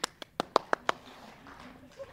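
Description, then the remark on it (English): A speaker claps for himself after reaching the last slide of his talk, six times in a quick, steady rhythm, each clap a sharp, bright smack, before the sound fades into a faint murmur. “I just applauded for myself.”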